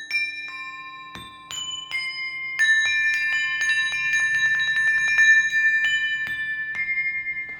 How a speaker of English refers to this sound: One of the things I think I'd like to explore with it are these little bells that I brought with me. They're called saucer bells, and they're so easily portable, but they sound really beautiful.